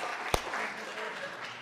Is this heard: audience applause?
yes